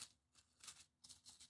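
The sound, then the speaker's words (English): Soft, crisp crinkling of pink tissue paper being unwrapped from a children's book sealed with sky blue tape, coming in several short rustling bursts, with no talking. “All right, and now, wrapped in pink tissue paper, a further item.”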